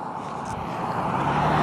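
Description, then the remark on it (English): A car on a remote road at lunchtime, its broad engine and tyre rumble holding steady and swelling slightly louder, with no one talking. “Man, even at lunchtime, there's a car with the crap.”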